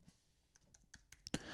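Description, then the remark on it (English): Slow, unhurried typing on a computer keyboard: about six separate key clicks at uneven intervals, quiet, with the last couple of presses a bit sharper and louder. “Ooh, what am I, grandpa typing now? They should use one finger.”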